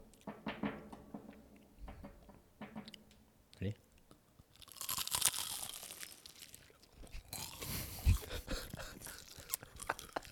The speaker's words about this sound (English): Here, actually. Let's crunch together. I'll synchronize my eating with you.